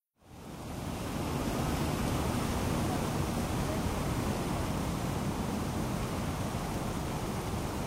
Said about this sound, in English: I'm at the 9/11 Memorial at Ground Zero in Lower Manhattan. You can hear the water rushing into the voids where the towers once stood.